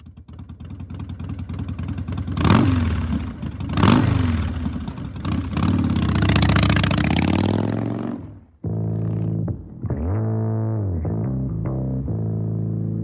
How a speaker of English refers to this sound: It was ingrained within me to be afraid of motorcycles now. I was really afraid of the sound of a motorcycle.